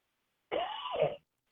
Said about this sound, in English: Excuse me. I didn't want to cough on the air.